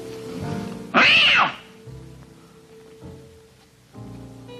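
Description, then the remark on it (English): A cat lets out one loud, drawn-out meow, rising and then falling in pitch, over a quiet, steady background of low tones. “What's that? It's not those cats.”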